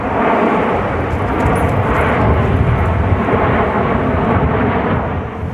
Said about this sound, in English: The world famous Snowbirds flying over the region in formation as part of Operation Inspiration. They were joined, as you probably noticed, by a CF-18 in a rare guest appearance.